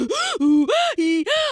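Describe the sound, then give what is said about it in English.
A voice imitates a man's heavy, rapid panting: five quick, loud, voiced breaths alternating in and out in a steady rhythm, with no other sounds. “So he fucking is huffing and a puffing.”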